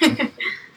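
A sudden sneeze bursts out sharply, followed by a brief breathy, voiced tail, all over in under a second with no talking.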